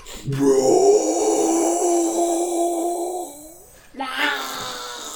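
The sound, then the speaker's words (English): A person imitates the roar of Krusty the Snowman, a big snowman mashed up with a jack-o'-lantern coming to life, eyes and mouth glowing green: a long, loud, gravelly growl held for about three seconds that trails off, then a shorter second growl. “And you hear him roar.”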